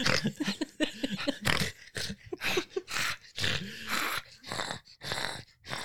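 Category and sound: animal, dog growling and whimpering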